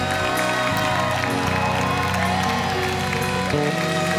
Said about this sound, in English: I want you to clap a little louder to Jesus.